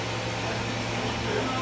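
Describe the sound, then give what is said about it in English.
A blender runs continuously, giving off a steady, even motor whir with a low hum underneath that holds at a constant level throughout. “What's that shit called? A blender.”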